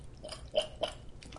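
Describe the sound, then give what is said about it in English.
Quiet crunching and slurping as someone bites into and chews a frozen ice pop, with several wet, crackly bites spaced about a quarter second apart and no talking. “Just like when the ice pop melts, I tell you what, guys. If you haven't had this in a long time, try these out right here.”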